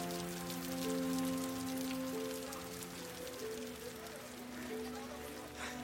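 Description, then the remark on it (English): Heavy rain pours down in a dense, steady hiss that stays loud and unbroken throughout, with a few low sustained tones droning underneath. “And it's pouring.”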